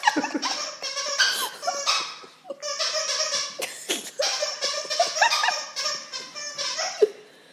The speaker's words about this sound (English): This dog. Squeaky noises.